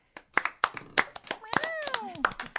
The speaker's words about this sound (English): Wow. Do you have to do that? I was applauding.